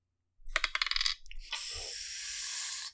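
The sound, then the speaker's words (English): Dice are rolled for an attack during a Dungeons & Dragons game: a quick burst of sharp clattering clicks across a hard surface, followed by a steady noisy hiss lasting a couple of seconds. No one speaks. “Dice don't fail me now.”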